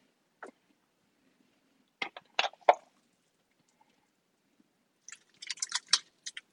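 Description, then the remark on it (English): Wet, soft plops and squelches as chopped chicken pieces drop into a pot of chili: a lone splat, a quick cluster of three, then a denser flurry of squishy impacts near the end. No talking. “And put it right into here with our chili.”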